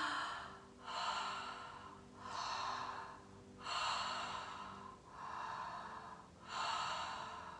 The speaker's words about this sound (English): You can do this through your nose or mouth. I personally prefer through my mouth, and it is breathing in and out without a pause. So it looks like this.